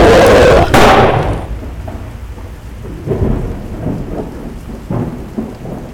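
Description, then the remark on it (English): A loud crack of thunder bursts out and rumbles away over a steady wash of heavy rain, with further low rolls of thunder continuing in the background. “I drew my automatic pistol and shot it under cover of the thunder.”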